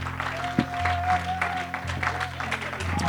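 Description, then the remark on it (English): An audience at a morning worship service claps steadily, scattered voices calling out over a sustained organ tone and low hum, the applause moderately loud throughout. “Oh, why don't you just take a moment and clap your hands and lift your voice?”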